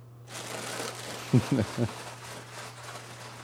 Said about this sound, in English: Chips, ladies and gentlemen. The sound of chips. Chips crunching, crackling.